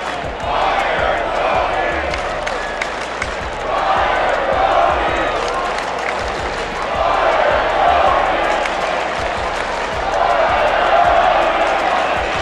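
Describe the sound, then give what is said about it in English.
White Sox fans at Guaranteed Rate Field chant "Fire, Tony" in loud, rhythmic unison in the 10th inning of a game against the Rangers, with sharp claps and thumps punctuating the steady roar throughout; voices swell and recede in waves, and a broadcaster is heard. “You can hear the crowd, White Sox fans, chanting, "Fire, Tony," and the broadcaster.”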